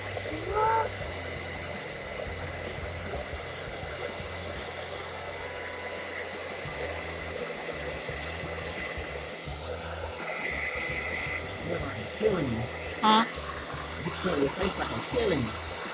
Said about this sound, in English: Yeah, y'all gonna get a little blow dryer.